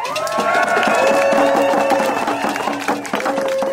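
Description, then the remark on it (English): A large outdoor crowd of First Nations people and supporters cheers and shouts continuously on Granville Street in downtown Vancouver, at a rally on day one of the federal court case against Kinder Morgan; a loud, dense wash of voices with sustained high calls or whoops riding over the top throughout. “Orcas swim through a sea of people down Granville Street to meet a cheering crowd.”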